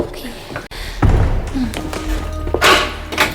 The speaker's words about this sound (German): nur weil du der Letzte bist, brauchst du doch die Tür nicht hinter dir zu schließen. Habe ich doch gar nicht gemacht. Was? Die schließt sich doch nicht von allein. Oh Mann. Die Tür ist von innen verriegelt.